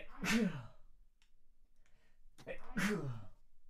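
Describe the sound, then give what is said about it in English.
Two loud sneezes a couple of seconds apart, each a sharp breathy burst with a voiced edge, separated by near silence. “Damn. Bless you. Sorry.”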